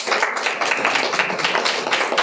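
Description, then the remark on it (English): Steady applause from an audience, a dense wash of many hands clapping at once, fairly loud and sustained throughout without any voices. “So those of you who have heard the lost dog story and the healed dishwasher story, I want to use a sort of applause meter.”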